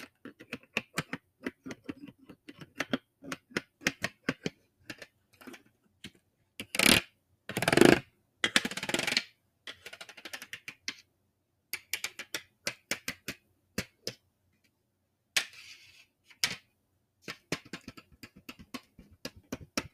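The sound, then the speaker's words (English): Colored pencils are handled, rattled, tapped and set down with crisp clicks and taps, with a few louder bursts of rustling and clattering in between; no talking. “So that was the colored pencils.”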